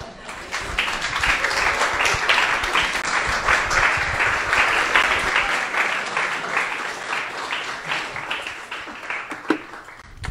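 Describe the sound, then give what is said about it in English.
Sustained audience applause for a speaker after his offering, a dense crackle of many hands clapping steadily for about ten seconds at a fairly even loudness, tapering slightly near the end with no talking over it. “Let's give another round of applause to him.”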